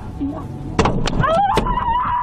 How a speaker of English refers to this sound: And that was a gunshot or two.